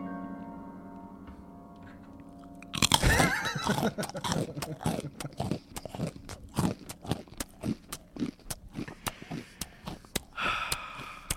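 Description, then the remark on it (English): Loud crunching of pretzels being chewed, a rapid, irregular run of crisp snaps and crackles that goes on for several seconds after a short, steady tonal sound at the start. “You Can't Eat Pretzels During A Podcast”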